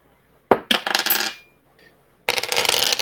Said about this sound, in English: Sorry, that wasn't a roll. That was me putting down dice.